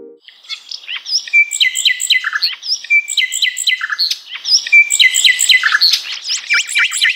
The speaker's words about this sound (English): its brain and its behavior, and most importantly, how nightingales learn their unique song and why they sing.